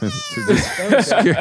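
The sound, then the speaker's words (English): A kitten, one of two, lets out a single high-pitched meow, followed straight away by a person talking. “would like to see the two kittens”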